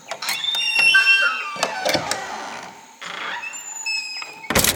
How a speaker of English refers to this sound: And right when they got there, Luke saw the door open.